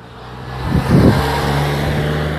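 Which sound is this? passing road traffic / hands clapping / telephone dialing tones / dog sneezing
passing road traffic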